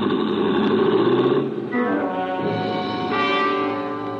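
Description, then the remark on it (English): A car engine guns loudly and roars away down the length of an alley before swerving on two wheels into a busy street, its droning tone stepping up in pitch twice as it accelerates, with no voices over it. “The shock of fire red hair gunned my car the length of the alley and then swerved on two wheels into the busy street beyond and was gone.”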